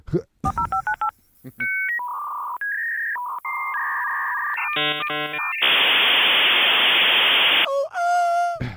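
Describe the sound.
A voice imitates a dial-up modem connecting: rapid dialing beeps, then warbling handshake tones and chirps, a long loud hiss of static, and a final squeal, delivered without talking.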